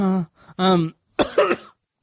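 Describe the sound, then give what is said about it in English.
Two short, voiced throat-clearing grunts, then a harsher, breathy cough, all fairly loud with brief pauses between them and no talking. “coughing all the time.”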